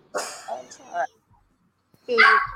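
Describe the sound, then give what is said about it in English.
Dogs bark in two loud, harsh bursts: a run of overlapping yaps, a short pause, then another sharp flurry of barking. “And she evil-eyed those dogs quick. She was like, what? Stop it.”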